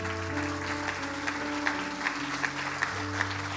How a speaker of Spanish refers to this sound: Va a dar un fuerte aplauso al Señor.